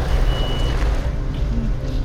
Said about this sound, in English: Stop. Stop. Stop the truck.